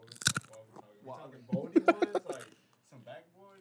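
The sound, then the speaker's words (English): A sharp crunch as someone bites into crisp food, followed by muffled chewing mixed with indistinct voiced murmurs. “Hold up, get this crunch.”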